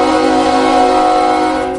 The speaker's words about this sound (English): He sent me the live sound of his train sound. Yeah, legit sound.